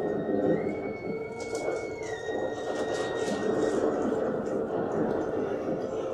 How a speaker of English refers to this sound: Again, you hear the bosun's whistle.